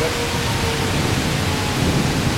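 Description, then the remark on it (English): A heavy thunderstorm: dense, steady roar of pouring rain, with a low continuous rumble of thunder underneath, loud throughout, no voices. “So, I mean, it's still a pretty heavy thunderstorm.”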